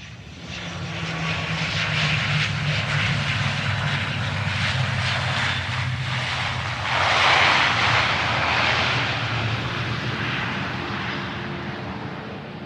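A steady, droning airplane engine roars throughout, with a low humming undertone and a brief swell of louder rushing noise partway through, from a plane in flight that lands at Firenze Airport.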